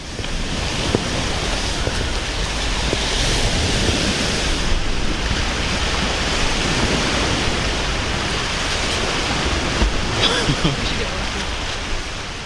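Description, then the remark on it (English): Big sea waves crash and churn against a rocky shoreline in a loud, continuous roar, swelling in repeated surges, with gusty wind buffeting the microphone throughout. “there's some huge waves coming towards us. Back up, it's gonna splash.”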